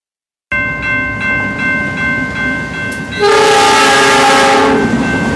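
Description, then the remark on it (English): A loud train horn blares in sustained tones as a train rumbles past through the seaside community of White Rock, the horn swelling louder partway through over a steady roar of rolling wheels. “As Paul Johnson reports, trains that regularly run through the seaside community will do so unannounced.”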